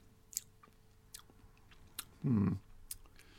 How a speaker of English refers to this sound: Yeah, the eyes are closed. I can confirm. He's had a sip.